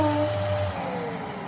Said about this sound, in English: Sorry about this, this hoovering's taking forever. Even my Henry the Hoover's rolling his eyes.